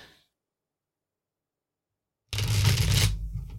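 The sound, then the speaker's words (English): After a stretch of silence, a deck of tarot cards, a little larger than normal, is shuffled: one loud, dense riffling burst of papery flutter lasting about a second, then quickly fading out. No one speaks. “I hope the shuffling sounds cool.”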